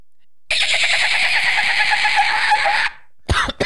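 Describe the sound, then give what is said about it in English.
A person imitates a dolphin with a loud, high, warbling squeal held for over two seconds, then a brief pause and a quick chattering burst. “What noise does a dolphin make?”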